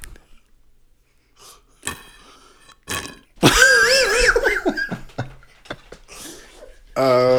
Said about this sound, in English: Hang on, let me drink some water. Oh, okay. Activate the glottis mic. That water sounded really good, so I'm going to have a sip as well.